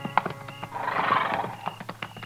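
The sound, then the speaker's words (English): A horse at a hunter's camp lets out a long, wavering whinny, while hooves clip-clop in a quick, uneven patter before and after the neigh. “He had mules. This man's got horses.”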